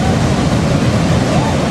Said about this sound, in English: The water comes up the beach, but then as it goes out to the ocean again